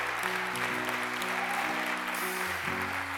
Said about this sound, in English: Come on, give God a hand clap of praise today.